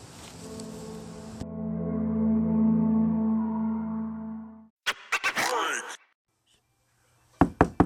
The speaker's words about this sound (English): We should be hearing the knock on the door at any second.